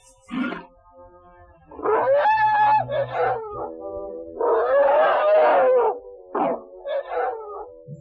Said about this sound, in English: The natives of the jungle say that whole herds of playful Indian elephants migrate here to bathe.